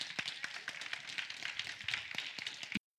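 An audience claps their hands together as a hand clap of praise to the Lord, producing a dense, steady wash of overlapping claps that holds at an even level and then cuts off abruptly.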